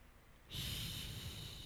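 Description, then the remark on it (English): After a brief silence, a voice imitates a dragon's heavy breathing with one loud, rasping, hissy exhale held for over a second, with no talking. “Is that the sound the dragon makes? Yep, breathing.”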